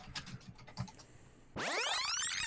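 Rapid, forceful clacking of keys on a computer keyboard for about a second and a half, abruptly cut off by a loud, bright sweeping electronic whoosh that fills the rest.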